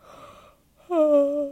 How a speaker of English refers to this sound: I yawned again. I'm sorry.